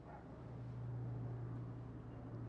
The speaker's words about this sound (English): So outer awareness, we could hear sound. There's a plane going by.